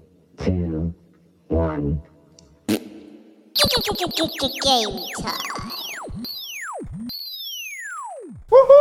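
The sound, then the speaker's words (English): Two short harmonic voice-like boops from a robot named Bob, then a sudden burst of rapid electronic robot chirps and beeps, quick rising and falling sweeps that slow into a few long, swooping descending tones. “He's a beep, beep, boop, beep, boop, beep.”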